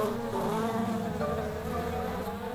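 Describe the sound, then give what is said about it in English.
A group of red bumblebees buzz in a steady, continuous drone, fairly loud, with overlapping wingbeat hums wavering slightly in pitch and no voices. “I've got this group of questionable bees, if we're going to be talking about questionable bees. These are red bumbles.”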